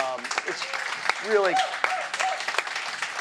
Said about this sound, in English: First of all, I think everybody should give Deborah and Cynthia a round of applause.